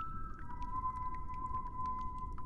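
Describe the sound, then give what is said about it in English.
Thin, wavering whistled tones hold around a steady mid pitch, broken by scattered clicks over a low rumbling bed; the whistling sounds oddly sing-song and halting. “As it goes on, I think you begin to realize that it's actually the sound of someone whistling, like maybe a small child.”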